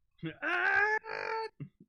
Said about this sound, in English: You know what? Here's Ichi just talking about Dawn Brothers, just screaming agony.